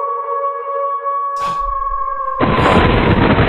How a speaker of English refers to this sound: Do you hear the thunder? The wolf howling?